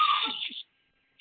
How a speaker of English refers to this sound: To the screaming kids in the background that always make the show interesting.